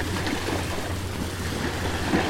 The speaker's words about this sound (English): Whoa, oh fuck, now there's a bunch of waves that are like splashing on me because there's no room on this beach.